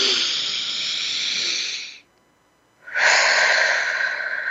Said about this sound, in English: And in order to get the most out of our time together, I'm going to encourage you to take a moment and breathe. Let's breathe in.